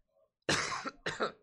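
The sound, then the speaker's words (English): A couple of sharp coughs in quick succession, the first longer and harsher, the second short and abrupt, after a brief quiet pause. “No, that was a cough.”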